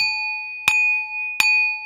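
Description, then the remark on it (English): A bright dinner bell rings with a sustained metallic tone, struck twice about 0.7 seconds apart, each strike adding a sharp clink as the pure ringing continues steadily throughout. “Like a dinner bell, it's summary time.”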